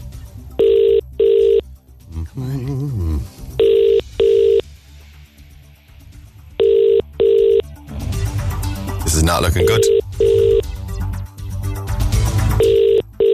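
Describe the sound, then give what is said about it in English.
An outgoing call's ringback tone repeats in steady double pulses, about four pairs in all, clear and prominent, while radio hosts talk and murmur between the rings as they call back a listener who texted in. “Oh, it's ringing.”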